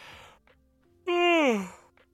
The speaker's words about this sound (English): Oh, I said I had to yawn.